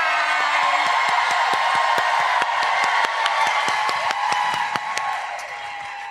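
Sustained crowd applause with dense, overlapping claps and cheering voices, loud and steady throughout, tapering slightly at the very end.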